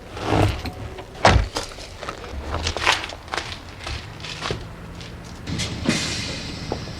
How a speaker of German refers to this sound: Die hintere Tür, sie geht auf.